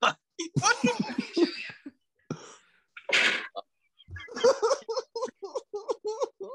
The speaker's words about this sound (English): Oh, I like how every time I play it, the fart sounds different.